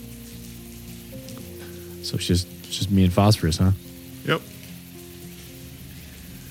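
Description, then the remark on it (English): Steady rain patters and hisses across the whole clip, a constant wash of soft noise, while two voices briefly exchange a few words partway through over a low sustained tone. “I'm used to the rain.”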